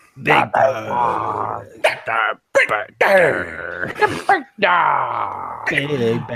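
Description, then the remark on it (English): A man's voice imitates a big dog, letting out a string of rough, throaty growls and gruff barks in loud bursts separated by short pauses. “we'll move on, I think... to Brock Lesnar and the big dog”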